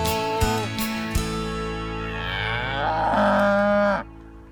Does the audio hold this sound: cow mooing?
yes